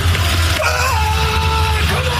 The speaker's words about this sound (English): Ryan Krauser, he won the gold. And listen to him scream as he's letting the shot put fly across the field.